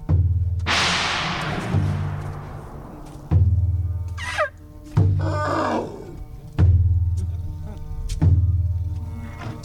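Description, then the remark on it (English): Trained elephants at the Thai Elephant Conservation Center in Lampang Province, Thailand, bang out a slow, uneven rhythm on resonant metal tools confiscated from illegal loggers, with deep ringing thuds, an early crashing clang and a couple of wavering trumpet-like calls, loud. “The pachyderms have been trained to create their own music using tools confiscated from illegal loggers.”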